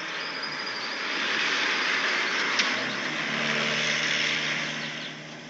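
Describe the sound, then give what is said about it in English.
A vehicle's broad engine and road roar swells as it approaches, holds loud for a few seconds with a faint whine, then begins to fade as it passes. “Here comes the car.”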